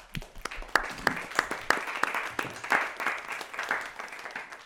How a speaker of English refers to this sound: So thank you all for being a part of this tonight in my presence and in my absence. So a round of applause to all of you.